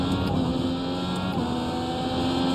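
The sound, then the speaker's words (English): An Indy car engine roars loudly and continuously, holding a high, steady buzzing pitch as it runs at about 190 down a long straightaway, with no voices. “These Indy cars, it doesn't say it here, but we'll be running about 190 down this straightaway here.”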